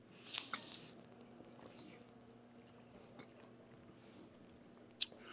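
A person drinks water in quiet sips and swallows with soft wet mouth clicks, a sharper click near the end, and a low steady background hum.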